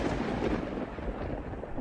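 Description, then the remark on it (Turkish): A thunderstorm rising at sea roars steadily, with deep rumbling and a dense, noisy wash of wind and rain that stays loud and unbroken throughout, with no voices. “Bu sırada fırtına çıkmaya başlamış.”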